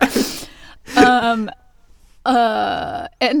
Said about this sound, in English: After she says that, before the chorus, it sounds like she hiccups. Did you hear that?